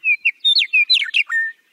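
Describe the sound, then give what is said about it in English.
A meadowlark sings a quick, clear phrase of fluting whistles and slurred notes, ending on a long level whistle. It sounds bright, with no voices. “In the Cherokee language, for instance, the meadowlark is called star because of the way the bird's tail spreads out when it soars.”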